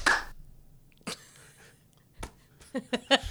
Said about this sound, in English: Just one clap, not an applause. So on the count of three, we're going to do like an alligator clap. One, two, three.